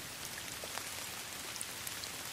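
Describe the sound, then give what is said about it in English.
Steady heavy rain driven by the wind pours down, with big, fat drops pattering and splashing on a surface in a dense, continuous hiss and no voices. “Big drops of rain beaten by the wind.”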